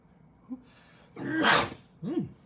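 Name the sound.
sneeze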